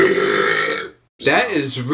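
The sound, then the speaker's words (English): A deep, loud, drawn-out belch from a man rumbles for almost a second, then after a brief silence a person starts talking. “That was real deal belch, dude. That came from the depths that of hell.”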